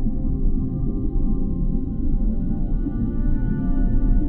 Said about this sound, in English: Let the slow dance of the magic whale enchant you with her soothing rhythm.